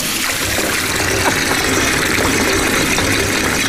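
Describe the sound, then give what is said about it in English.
A tap runs steadily, a continuous hissing rush of water with a faint trickling texture, loud and unbroken throughout with no voices. “There's leaving a tap running.”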